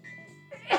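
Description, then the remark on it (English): A single sharp sneeze bursts out near the end, loud and brief, following a moment of soft sustained tones in the background. “Sorry. Bless you.”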